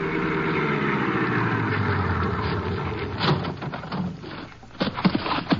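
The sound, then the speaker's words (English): A car engine idles with a steady, low rumbling hum, fairly loud, then a few sharp clunks and rustles break in over it near the end. “You mind if I wait in the car?”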